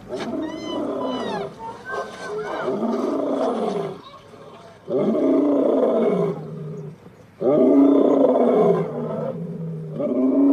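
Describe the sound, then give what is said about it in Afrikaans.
Lions in the Cape roar and growl while playing, in several long, loud bursts with short pauses between them. The deep, rumbling calls sound strong, and no one speaks over them. “Kom ons praat oor die leeus.”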